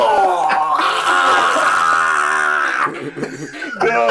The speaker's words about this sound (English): Let me scream.